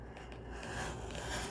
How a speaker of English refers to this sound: I'm just getting the basic dimensions. You can use your scissors to cut this. You can use a guillotine. I'm going to use the craft knife so everybody can see what I'm doing.